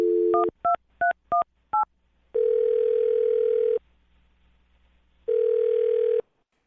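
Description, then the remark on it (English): A quick run of touch-tone keypad beeps as a phone number is dialed, followed by two long ringback tones separated by a pause. The tones are clear, with no talking. “All right, here we go. I'm dial the phone number.”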